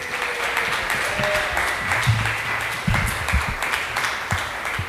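A comedy show audience applauds a comic after her set, steadily for about five seconds, a dense, even wash of many hands clapping at a constant loudness, with a few faint voices mixed in underneath.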